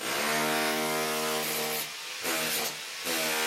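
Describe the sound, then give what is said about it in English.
A construction worker uses a loud power tool to scrape tile off a shower wall during a remodel in a Capitol Hill condo, its motor whining steadily, easing off briefly twice before surging back. No one speaks. “In a Capitol Hill condo, a construction worker scrapes tiles from a shower with a power tool.”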